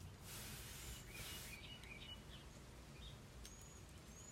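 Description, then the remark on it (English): Birds chirp in short scattered calls outdoors on a warm day with a little breeze, over a steady background of wind and low rumble, with no one talking. “I don't know if you can hear the birds or not.”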